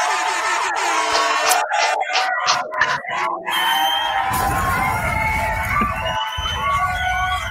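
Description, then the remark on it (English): A crowd cheers and whoops loudly with high shouts and screams, then sustained applause builds into a dense wash of clapping and cheering that continues to the end. “Clap it up, y'all. Let's clap it up.”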